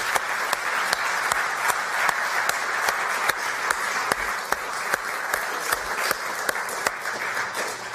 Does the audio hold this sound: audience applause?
yes